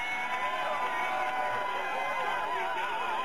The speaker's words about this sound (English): And you're still cheering me, only in 81 it was Jesse Sucks. And, but you were, the main thing is you were cheering then, we're cheering now